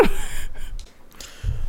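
A few airy, breathy inhalations through the nose, someone sniffing a perfume, with a soft low rumble underneath and a brief pause between the sniffs.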